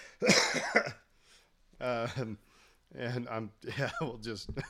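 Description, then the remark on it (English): A loud, harsh coughing fit erupts at the start, a few rough bursts run together, followed by short stretches of a man's voice. “I'm coughing.”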